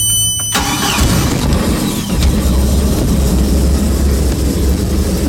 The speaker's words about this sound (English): All right, I'm going to start up the engine. I hope it's not going to be too loud on your ear, but it will be loud for a second.